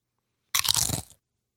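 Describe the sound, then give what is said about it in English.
A single loud crunch as someone bites into Pringles potato chips from a can, a brief burst of crackling lasting about half a second before silence. “Good crunch.”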